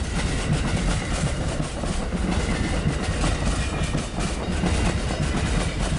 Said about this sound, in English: And now we're passing another long, long freight train. Containers double stacked. It's waiting for us to pass so that it can use the single track that we've just been coming along.